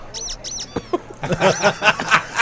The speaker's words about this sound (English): What does that mean? I'm squeaky? Squeaky like toy. Like a squeaky toy?